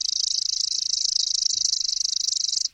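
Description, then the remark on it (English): A male chipping sparrow sings madly from a branch in front of the listener, in response to its song played from an iPod through an external speaker: one steady, rapid, dry trill of evenly repeated high chips, close and fairly loud, lasting nearly three seconds before stopping abruptly, with no other sounds. “I dialed up the pre-programmed call on my iPod, broadcast the song through an external speaker, and bada-bing, there it was, a male chipping sparrow, hormones pumping, singing madly from the branch in front of me.”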